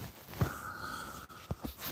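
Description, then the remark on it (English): Soft rustling of bedsheets in a few brief, scratchy bursts as a man wakes up in bed in the dark, over a faint steady hum. “Yeah, that's like wrestling in the bed.”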